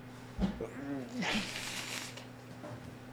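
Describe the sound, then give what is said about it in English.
A single sneeze: a short voiced, rising intake that bursts into a loud, hissy, breathy blast, then fades into a quiet background hum. “Bless you. Bless you.”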